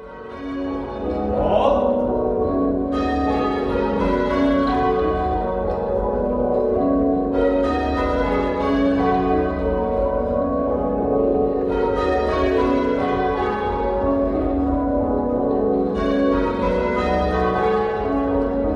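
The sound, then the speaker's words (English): Church bells ringing in steady rounds, half-muffled so each stroke is followed by a softer, echoing strike, forming a continuous loud peal with a rhythmic ebb and swell. “The common thing is that the bells were half muffled in both, giving that echoey sound.”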